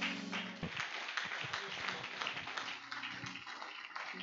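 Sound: audience clapping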